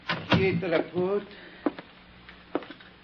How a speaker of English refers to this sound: I stepped inside and closed the door.